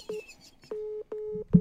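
A steady electronic tone beeps out a Morse code pattern: one short beep followed by two longer ones, clear and close, with faint clicks at each onset and no voices.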